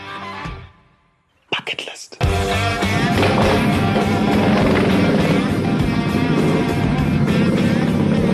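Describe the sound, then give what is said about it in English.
After a brief quiet moment, loud engine noise bursts in and holds steady, a rough, revving rumble of motorbikes riding down a winding dirt road from a mountain. “And if I want to join them, I'd better get comfy on a motorbike.”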